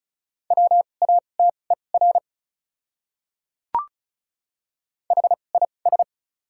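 Fast Morse code at 35 words per minute with doubled character spacing, sending common English words, in a steady mid-pitched tone, with rapid short and long beeps in two bursts separated by a pause and a single sharp click.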